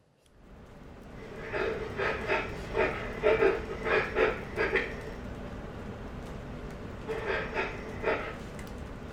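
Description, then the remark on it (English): Quick, rhythmic breaths pulse in a steady run of about a dozen huffs, pause, then resume briefly; moderately loud and airy, over a constant low hiss with no talking. “It's why I stop and I pause and I show every image that I can, play every clip that I can, return back to where I started with breathing.”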